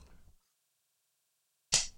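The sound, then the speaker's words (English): After a soft low rustle and a long pause of silence, a sharp, loud smack rings out as several people slap their bellies, a single bright crack that fades quickly. “We all just slapped our bellies. I'm sure you could hear it.”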